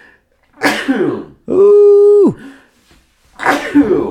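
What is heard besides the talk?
repeated sneezing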